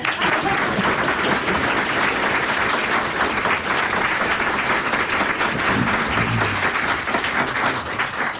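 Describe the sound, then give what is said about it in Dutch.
Sustained applause from an audience welcoming Jenny Arian, a dense, steady wash of many hands clapping at an even loudness for the whole stretch, with no voices breaking through. “Jenny, baart je in applaus.”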